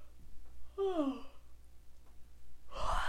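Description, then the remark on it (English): A person yawns aloud, a drawn-out voiced yawn sliding down in pitch, followed after a pause by a short breathy exhale. “We can't re-record this, so you guys are just gonna, you all are have to deal with the yawning.”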